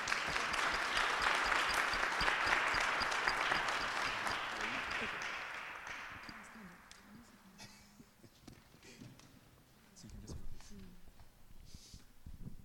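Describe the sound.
An audience claps loudly for a speaker after her presentation, a dense wash of many hands that holds steady for several seconds, then tapers off as a voice begins talking over the last scattered claps.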